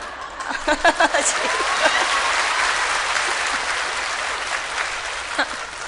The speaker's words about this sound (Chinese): 奇怪，讲什么你们都拍手。怎么那么高兴啊？